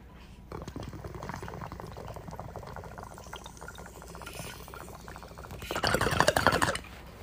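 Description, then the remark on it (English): Water gurgles and bubbles steadily through a bong as someone takes a hit of cannabis, a rapid continuous rattle that swells louder and frothier near the end before cutting off. No one speaks. “it's like the grape cake or whatever grape something is called is what I'm gonna be smoking on next after this bong rip.”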